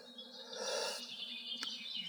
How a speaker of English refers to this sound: And look at that, isn't that precious? The bird song. The bird song, absolutely.